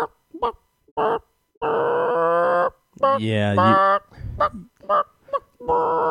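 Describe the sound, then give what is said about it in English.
A person imitates a chicken, with clucking bursts and a long, strained, drawn-out screech in the middle, loud, followed by a few more clucks and a brief spoken word. “But out of all the, out of the chicken noises I've heard, I've never felt like people get it right because they always miss that like that screech that they always have that they're drug out.”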